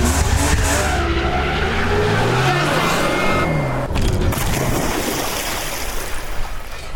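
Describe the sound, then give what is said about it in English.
A car engine revs loudly, its pitch rising and falling, while tires skid and screech across the ground, followed by a rough, rushing rumble that carries on to the end. “Get off the hood. Turn off the engine.”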